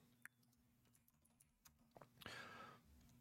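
Quiet, irregular clicks of numbers being typed on a computer keyboard, a scattered run of soft taps, ending in a brief hissy scrape over a low steady hum.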